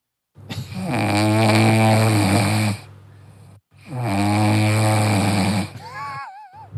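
A cat sleeping with two fish snores loudly: two long, rasping, buzzy breaths separated by a short pause, ending with a thin, wavering whistle.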